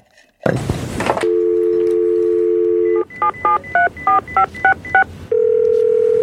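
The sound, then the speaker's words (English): A phone handset clatters as it's picked up, then a steady dial tone hums before a quick series of about seven touch-tone beeps as a number is dialed, followed by a ringing tone. No one speaks. “And let's see what happens when I dial this particular number.”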